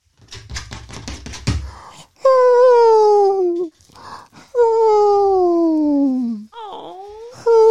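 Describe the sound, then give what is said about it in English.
Howie, a 15-pound cat, wails loudly for food at 7 a.m. in three long, drawn-out cries, the first two sliding steadily downward in pitch and the last rising, after a stretch of quick clicking and rustling. “Like you would think this cat is literally like one of those in the heart of an angel.”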